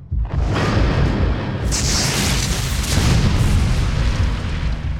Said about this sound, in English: A bolt of lightning tore the sky, crashing down to strike the exact spot where the doctor stood.